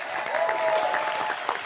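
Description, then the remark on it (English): A crowd applauds at the Letterkenny Talent Show, a dense patter of many hands clapping at once with a faint whistle or cheer riding over it, fairly loud throughout the short burst. “Round of applause.”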